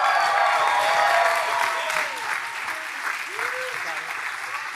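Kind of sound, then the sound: crowd, audience applauding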